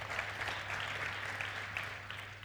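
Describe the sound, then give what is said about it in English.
Steady audience applause, a dense wash of many hands clapping at once, sustained and even throughout with no voices over it. “I really believe that's worthy of a bit of a clap, I think.”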